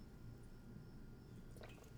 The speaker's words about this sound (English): I don't know if you guys, I drink water, if it sounds like ASMR-y